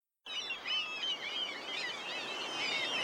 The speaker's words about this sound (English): Ah, seagulls, black-tailed gulls. I love the sound they make. Whenever I hear their calls in the morning, it makes me think I'm back in St. Petersburg.